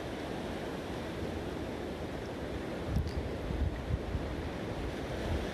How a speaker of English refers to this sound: Look, we could all be looking at the same beautiful, stunning water flowing in and out. And that's what's happening in this background. Can you hear the stunning water?